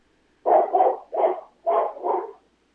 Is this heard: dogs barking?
yes